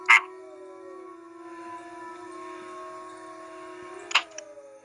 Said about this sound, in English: Well, that's another failed recording. But we'll keep it. That's the majestic howl of a wild west wolf.